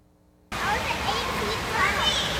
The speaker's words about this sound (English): She didn't want to even dip her toes in the water, and now with nobody in the water, she's jumping in, off a diving board into a 12-foot pool and swimming back.